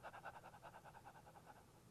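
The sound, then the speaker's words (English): A voice imitates the rapid, labored breathing of someone during a bad attack: quick, harsh gasping breaths in a steady rhythm, about five per second, fairly loud, with no words spoken. “He was breathing like this.”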